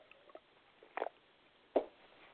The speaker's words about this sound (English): And I'm just going to have a drink of water because I've been talking for a while.